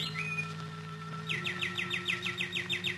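A songbird sings a quick, even run of about ten bright chirping notes, preceded by a brief whistle-like call, all over a faint steady background hum.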